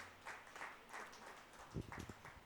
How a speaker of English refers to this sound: Oh, clap your hands for the Lord Jesus.